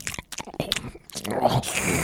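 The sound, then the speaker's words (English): Wet mouth noises imitating someone slurping up spaghetti: a few quick smacking clicks, then a longer, hissy sucking slurp that fills the last second. “That last one was a little gross because I'm thinking of mouth sounds yeah. slurping up yeah. spaghetti.”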